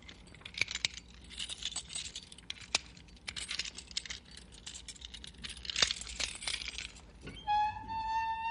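A jail cell door being unlocked and opened to let in a visitor: keys jangle and a lock clicks and clanks for several seconds, then the hinges give a sustained, high-pitched squeal as the door swings open.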